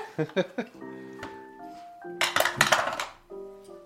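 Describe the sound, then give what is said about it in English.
A quick burst of hard, hollow clattering as dice tumble down a dice tower and settle, rolled for lesser healing potions in a tabletop role-playing game, with voices talking before and after the rattle. “Here, use a dice tower. Try a dice tower.”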